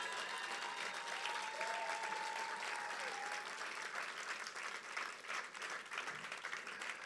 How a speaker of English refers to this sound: No, that's not how you're going to clap for my son. Otherwise, this microphone is going down.